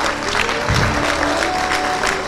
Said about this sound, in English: Well, good morning, Spruce Grove Community Church. Isn't it a good day to be in the house of the Lord? Yeah. Come on, let's give him a clap offering. Hallelujah.